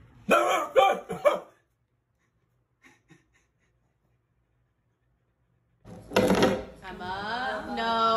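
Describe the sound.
A person imitates a dog barking to wake someone up, with three sharp barks in quick succession, then a pause and another harsh bark that trails into a wavering, whine-like vocal sound.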